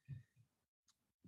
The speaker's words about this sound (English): It's a solid burp.